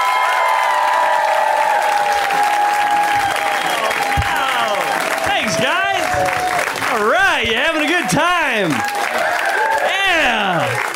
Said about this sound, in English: So when it's somebody's first time on Put Your Hands Together, we welcome them with a resounding round of applause. Are you ready to do that?